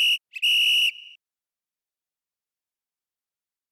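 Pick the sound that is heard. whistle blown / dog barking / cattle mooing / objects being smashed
whistle blown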